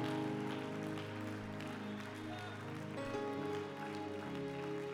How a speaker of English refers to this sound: Oh, if you're thankful for the Holy Ghost, why don't you give him another hand clap and a shout of praise?